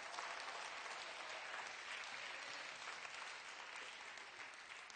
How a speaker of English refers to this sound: Hallelujah. Come on, clap your hands and give God some praise.